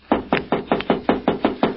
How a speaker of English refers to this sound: Now, I'll knock.